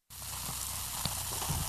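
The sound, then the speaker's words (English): Steady, crackling fizz of sparkling rosé bubbles fills the whole clip, a dense hiss with tiny pops and one brief sharper tick midway, no voices. “That's not static. It's the bubbles and the rest of my rose.”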